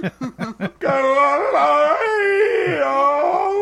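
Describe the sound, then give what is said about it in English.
A person imitates a howl at the moon, which they call their moon cry: four quick yipping bursts, then a long, loud, wavering howl that slides up and down in pitch for about three seconds. “What the hell was that? No, it was what we call it, my moon cry.”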